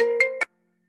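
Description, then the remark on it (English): A computer notification chime: a short, bright electronic tone with two quick accented blips near its end, sounding clearly on its own and then cutting to silence. “Your phone needs to be on silent. That's my computer.”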